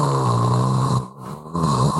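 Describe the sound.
A voice imitates a white noise machine with a steady, raspy, snore-like droning hiss that dips briefly in the middle before resuming at full strength.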